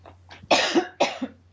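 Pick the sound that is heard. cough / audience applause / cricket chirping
cough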